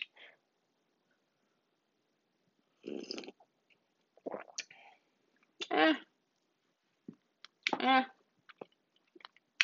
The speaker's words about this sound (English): I'm gonna test out this Pop Tart with the coffee. Let's see. I'm gonna take my very first sip, actually. It's hot. I'm gonna blow.